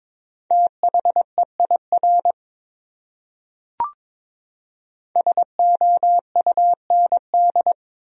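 Morse code beeps at 22 words per minute on a single steady mid-pitched tone, short and long pulses forming two quick groups separated by a pause with a brief click between them, spelling a common English word.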